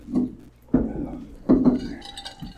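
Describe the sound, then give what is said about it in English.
Glasses clink together in a toast in a couple of quick knocks, leaving a faint bright ring, while voices murmur around them. “Cheers. Cheers. Cheers. Cheers.”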